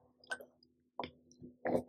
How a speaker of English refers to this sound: just going to take a quick water break here.